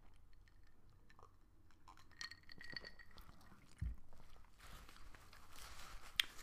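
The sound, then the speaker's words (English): Quiet sounds of someone sipping cola from a glass: faint clinks and a soft thud, then a brief slurping sip with a light fizzy hiss. No one speaks. “I'm gonna take another sip of my cola.”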